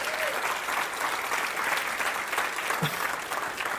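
A crowd claps hands together in sustained, dense applause, a steady wash of overlapping claps that holds at an even loudness for several seconds with no break.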